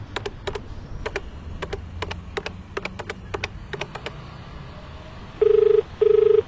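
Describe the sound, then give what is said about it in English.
A quick series of sharp button clicks, like a number being keyed in, then two short bursts of a steady electronic ringback tone as an outgoing call to a pizza giveaway winner starts ringing. “we're calling you to inform you that you won the Pizza Party Podcast Package Perfect Pizza Giveaway Party.”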